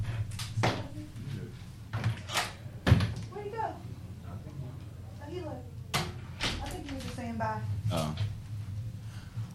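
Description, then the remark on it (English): A door clicks and thumps open with several sharp knocks and clunks spread across the moment, while people murmur and talk in the background. “Oh, you can open the door.”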